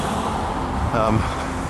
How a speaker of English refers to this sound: So I just gotta look out for traffic here for a moment, trying to cross the road.